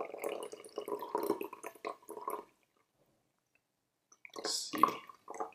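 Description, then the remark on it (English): Tea from a second steeping, brewed a long time with little water, is poured in a steady, gurgling stream for a couple of seconds and then stops. After a short silence, a brief splashy, dripping burst follows. “Let's pour out the second steeping.”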